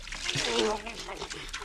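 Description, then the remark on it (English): A quick splash of water poured over a man, a bandit, in one brief, fairly loud burst, with his voice sputtering and groaning beneath it. “A little of this water over this bandido.”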